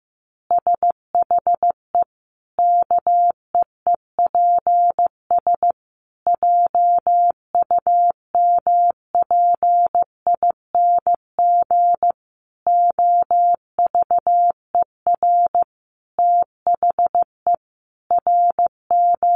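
Morse code sent at about 15 words per minute: a single steady mid-pitched tone keyed into quick dots and longer dashes, grouped with short pauses between letters and words, with no voices.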